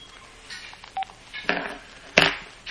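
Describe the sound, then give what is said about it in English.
A short electronic telephone keypad beep sounds once, followed by two louder bursts of rustling, crinkling handling noise, with no talking. “Can you take the phone from here, please?”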